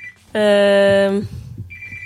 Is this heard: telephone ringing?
yes